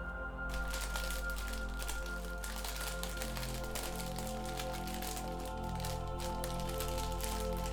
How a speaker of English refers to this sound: Absorb the sweet serenity of the crisp's crunch. The sound almost resembles a rain stick, which you would have used in a Year 4 music class.